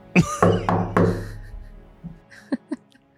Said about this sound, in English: Do we knock? Do we just go? I don't know how earthbenders... I mean, it's kind of polite to knock. Okay. So I'm just going to knock.